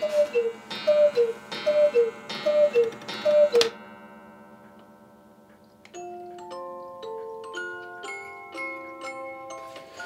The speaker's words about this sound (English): The latest additions to his collection, two gigantic hand-carved Bavarian cuckoo clocks, hang in his bedroom. This one has the best music box I've heard in a long time.